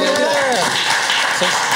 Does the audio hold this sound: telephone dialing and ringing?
no